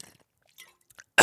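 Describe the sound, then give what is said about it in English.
Someone drinking water: a few faint wet mouth clicks and swallowing noises, then a sudden loud, breathy gasp or gulp at the very end. No one speaks. “All right, let me drink this water.”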